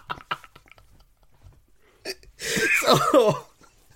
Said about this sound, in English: Do you want to have a little cough there